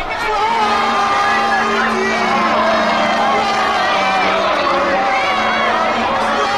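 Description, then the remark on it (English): A dense crowd at a temple Setsubun festival shouts and cheers together as a celebrity and priests throw beans over them, a loud, continuous wall of many voices calling out with scattered whoops for several seconds. “The celebrity and priests throw beans over the crowd, who shout back.”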